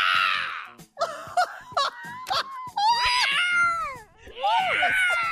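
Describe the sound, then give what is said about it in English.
A man's voice mimics an injured cat's yowl: a string of loud, strained wailing cries that bend up and down in pitch, broken by short gaps, ending in a long drawn-out moan. “When he's done, he yells like an injured cat.”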